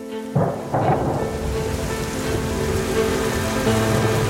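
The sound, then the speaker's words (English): Heavy rain pours down steadily at the edge of a vast canyon, a dense roaring hiss pounding the ground, with a couple of sharp thunder bursts early on and a low rumble beneath; no voices. “As they approached the edge, the rain grew more intense, pounding the ground with a ferocity that made it difficult to see.”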